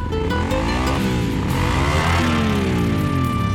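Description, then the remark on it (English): A loud motorcycle engine revs up and down continuously, its pitch sweeping up and falling back in repeated waves, steady throughout with no talking. “Don't horse around when it comes to motorcycle safety.”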